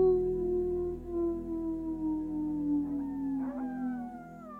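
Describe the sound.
A person lets out one long, sustained, steady wolf-like howl, its pitch sliding slowly downward over several seconds, with a brief rough wobble near the end.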